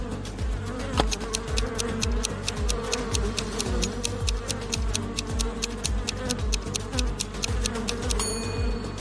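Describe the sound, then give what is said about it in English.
A swarm of bees drones in a dense, steady, agitated hum, with a rapid run of sharp, evenly spaced ticks clicking over it the whole time. No one speaks. “A bear or a swarm of bees?”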